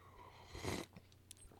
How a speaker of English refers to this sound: Let me take a sip of coffee.